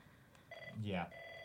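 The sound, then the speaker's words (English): An office telephone rings with a steady electronic tone, fairly faint, briefly covered by a person speaking before the ringing continues. “I apologize, my phone off here in the office here.”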